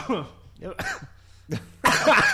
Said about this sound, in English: We can edit out all your coughs there, fucking mono boy.